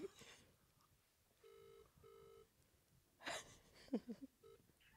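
A phone line rings out with one double-burst ringback tone, two short electronic buzzes back to back, heard as if through a handset, as a call is placed to a friend on a Wednesday evening, followed by a brief rustle and faint noises.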